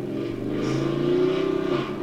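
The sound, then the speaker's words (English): A man's truck engine revs loudly outside, its pitch climbing and holding in a steady rising roar for a couple of seconds, with no voices over it. “That's not the movie. That's some guy outside. You stupid small penis truck.”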